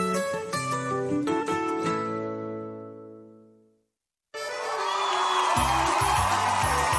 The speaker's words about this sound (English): Hear the roar of the crowd, or is that the roar of your stomach?